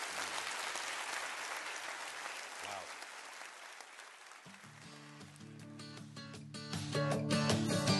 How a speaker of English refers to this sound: We can't let our faith fail in this hour because he's done so much for us. Can you clap your hands and rejoice for that?